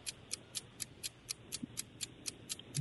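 A game show countdown clock ticks steadily during a timed quiz round, about four crisp ticks per second, bright and evenly spaced over a faint background hum, with no one speaking.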